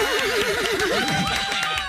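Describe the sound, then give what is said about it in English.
A horse whinnies loudly, one long quavering neigh with a rapidly wavering pitch that slides down and trails off in snorting flutters, with no talking over it. “Curlin, that's a horse. You're right.”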